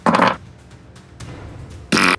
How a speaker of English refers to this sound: I'm rolling the thunder die, in case you guys can at home can hear that.